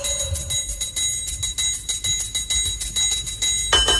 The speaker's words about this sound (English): Oh, bells. Oh, bells. Bells.